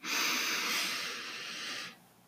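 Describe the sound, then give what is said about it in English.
A single long, airy deep inhale through the nose during a guided breathing exercise, lasting about two seconds with a steady hissing rush before stopping abruptly. No talking. “Breathing in peace.”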